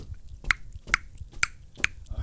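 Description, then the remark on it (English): Footsteps in flip-flops: four crisp, evenly spaced slaps of rubber soles, about two per second, fairly loud over a faint low background, with no talking. “you're wearing flip-flops. I always wear flip-flops.”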